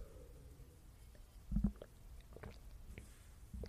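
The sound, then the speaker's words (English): A quiet sip of water: a low, thudding gulp or two followed by soft wet clicks and small swallowing noises, with no talking. “Before I start today's episode, hold on, I'm gonna take a drink of water.”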